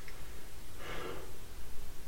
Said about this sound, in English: Sorry, I keep yawning, and it's so annoying. I do this whenever I talk like this